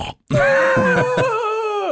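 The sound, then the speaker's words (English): A voice imitates a gross, guttural yawn after a brief pause: one drawn-out, strained groan, loud and throaty, wavering in pitch before sagging lower toward the end. “That kind of like dying old man noise.”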